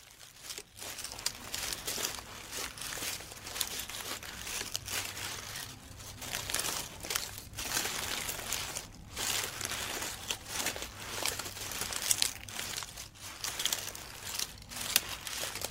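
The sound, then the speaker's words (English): Foley of a wombat moving, made with hands, a canvas bag and leaves: continuous dry crinkling and crunching with soft rustles and scuffling, steady and textured throughout, with no voices. “but I did also do some kind of wombat movement sounds with a bunch of leaves, and just because they had a slightly different feel to footsteps, I just kind of used my hands and a canvas bag and some leaves to get the kind of movement of a wombat.”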